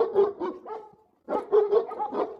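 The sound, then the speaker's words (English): Several fake dogs bark and yip over one another in quick, overlapping bursts, fairly loud, with a short pause before the chorus of barking picks up again. “Thank you all for bringing your fake dogs.”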